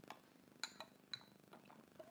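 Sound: glasses clinking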